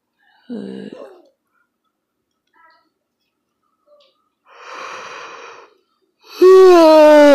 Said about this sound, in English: Damn it, I yawned.